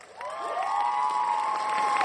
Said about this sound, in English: It's our audience yelling at me right now.